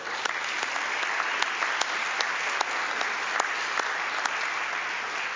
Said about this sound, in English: And we also include God in that applause.